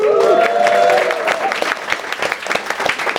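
A crowd claps and applauds to congratulate an engaged couple, in a dense, irregular patter of sharp hand claps, with a brief high cheer over the opening second before the clapping thins out.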